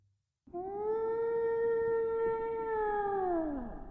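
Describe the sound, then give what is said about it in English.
A blue whale call: one long, loud, steady tonal moan with rich harmonics, held for about three seconds before sliding downward at the end, over a rumbling, noisy background. “And this is a blue whale.”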